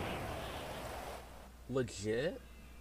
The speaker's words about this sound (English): Oh, it's raining already?